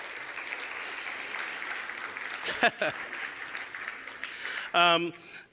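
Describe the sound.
An audience applauds steadily as a guest is invited up to join the speaker on the platform, a dense wash of clapping at even loudness, with a short voice-like burst near the end before it begins to fade.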